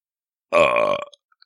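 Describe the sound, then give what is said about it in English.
A single large, very loud belch erupts abruptly, rumbling for about half a second before trailing off, with nothing else around it. “As he's starting to disappear, a large, very loud belch can be heard.”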